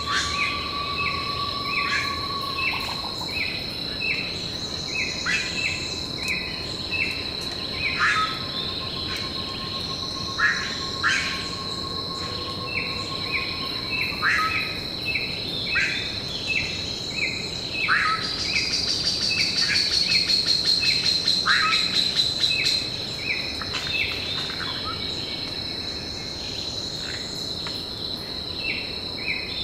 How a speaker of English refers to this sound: Dan Grossman and I recorded this dawn chorus when we visited the falls a few years ago.